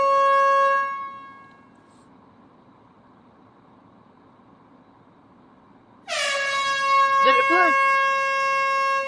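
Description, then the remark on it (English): A loud, brassy air horn blares twice: a short blast that fades out at the start, then after a quiet gap a long, sustained honk that holds to the end, with a faint voice underneath. “Let me see if I can get my air horn to play.”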